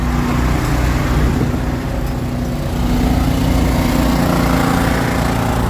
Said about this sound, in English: They got generators running in their cars.